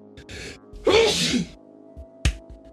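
A single loud sneeze bursts out with a sharp intake and explosive breathy spray, followed by a brief pause and a short sniff or click; no talking.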